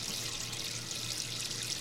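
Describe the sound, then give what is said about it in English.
Water runs and splashes steadily in a sink as dishes are washed, a continuous hiss of liquid with faint sloshing and no voices. “I'm up to my eyes in washing up water.”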